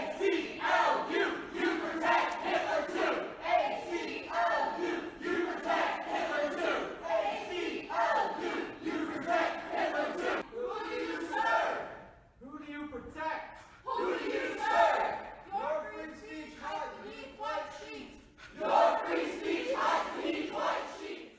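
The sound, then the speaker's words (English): A loud crowd of Black Lives Matter protesters at William & Mary shouts and chants in unison, shouting down the head of the Virginia chapter of the American Civil Liberties Union in 2017, voices rising and falling in rhythmic bursts that drown out everything else, with a brief lull near the middle before the yelling surges back. “Here's a group from Black Lives Matter at William & Mary shouting down the head of the Virginia chapter of the American Civil Liberties Union in 2017.”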